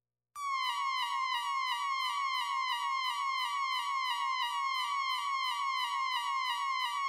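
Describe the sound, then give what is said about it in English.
A loud electronic emergency alert tone from a test of the Gotham City Emergency Broadcast System starts abruptly and warbles in fast, even, repeating sweeps, a shrill siren-like whine holding steady for about seven seconds with no voices. “The following is a test of the Gotham City Emergency Broadcast System.”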